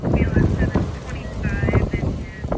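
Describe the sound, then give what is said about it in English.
Strong wind gusts roar and buffet through a town in the Napa Valley, California, with low rumbling surges rising and easing, plus faint whistling tones and a few thin voice-like traces in the noise. “Winds are whipping through the town, right? There's moments where it dies down and then it comes back.”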